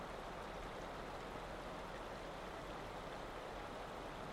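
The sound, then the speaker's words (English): Furnace Creek in Death Valley trickles and burbles steadily along the roadside, a continuous soft wash of gently running water with no voices or other sounds over it. “Furnace Creek trickles along the roadside, the slurp, slurp, slurp of its gentle current audible from the road.”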